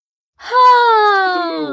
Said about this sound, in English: the movie theater yawn.